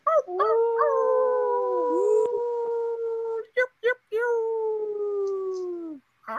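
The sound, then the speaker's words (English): Human voices imitate wolf howls on a full moon night in a house: two long, sustained, wavering howls held for several seconds each, separated by a few short yelping breaths, loud. “Let's give them some wolf howls.”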